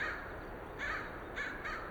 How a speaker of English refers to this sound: A pair of crows circle above me. I'm at the boundary of the Three Sisters Wilderness Area, a land of snow-capped mountains, evergreen forest, and scattered clearwater lakes.